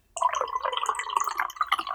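Mead is poured into a glass in a steady, bubbling stream that starts almost at once and gurgles on without pause, fairly loud, with no one talking.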